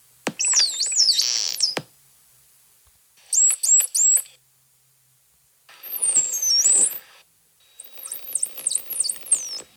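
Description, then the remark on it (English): Four separate bursts of high, sweeping whistles, each a rapid run of rising and falling tonal chirps with clicks underneath, separated by short silences; the groups differ in contour and length. “And here are four examples of signature whistles.”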